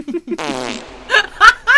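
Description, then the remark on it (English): A long, airy 'warehouse' fart sound effect with a breathy, echoing quality, followed by a few short bursts of laughter-like voices. “Not the airy warehouse fart!”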